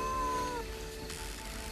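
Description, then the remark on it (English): A single drawn-out meow from a cat called Teddy, fairly quiet, its pitch sliding downward at the end before trailing into soft background noise. “I'm sure he's somebody's cat.”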